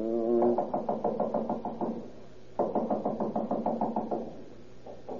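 A doorbell rings insistently in two long bursts of rapid, buzzing pulses, fairly loud, with a brief third ring starting at the end. No voices are heard.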